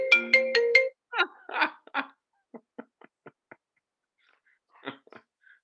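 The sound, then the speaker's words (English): A cell phone ringtone plays: four quick, bright electronic notes in a row, followed by a scatter of soft clicks and rustling handling noises as the ring cuts off. “I thought I turned my phone off.”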